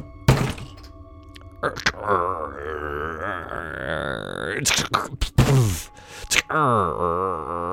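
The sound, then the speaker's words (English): A heavy shelter door up above a stairwell is pried open with several loud thunks and long, wavering metallic groans and creaks that rise and fall between the impacts, ending in a sustained strained creak. “And it sounds like someone is prying open the shelter door up above.”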